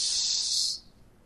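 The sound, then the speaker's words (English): A steady, airy hiss of breath blown out through pursed lips, bright and even, lasting under a second before cutting off into quiet. No talking. “So instead of the hum, you can exhale through pursed lips.”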